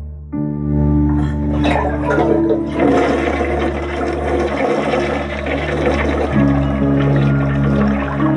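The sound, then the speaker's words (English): A toilet in a house flushes on its own, loudly, water rushing and gurgling steadily for several seconds over a low mechanical hum, with no one speaking. “The toilets used to flush on their own.”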